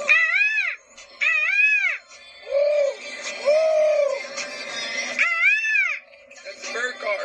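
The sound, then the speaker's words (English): A person imitates a morning bird call with their voice to start a show, giving a series of warbling, arching hoots that rise and fall in pitch, repeated about six times with short pauses between. “Let's do the bird call. Morning bird call.”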